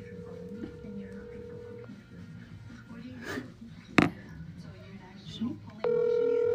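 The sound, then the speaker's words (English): An outgoing phone call's ringback tone purrs twice, a long steady ring, a pause filled with faint background voices and a sharp knock, then the ring starts again, clear, with no answer. “Let's call and see what she's doing.”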